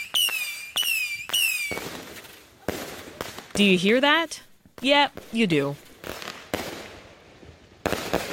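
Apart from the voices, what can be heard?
fireworks exploding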